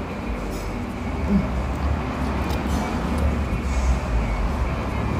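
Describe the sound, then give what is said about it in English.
A city bus rumbles along the street, its deep engine drone steady and fairly loud for several seconds amid a continuous wash of urban traffic noise, on a street served by bus routes 16, 22, 27 and 100. “So it's, the buses come through here too.”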